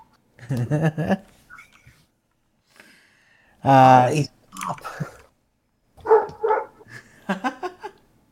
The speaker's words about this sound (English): I don't know what she's barking at.